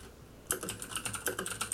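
Rapid, uneven keyboard typing starts after a brief quiet moment, a steady patter of crisp key clicks close to the mic with no voices.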